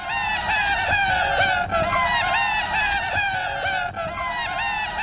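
Shrill, high-pitched squawking cries repeat in a rapid, continuous loop, sounding like seagulls or honking geese, loud and close with no talking.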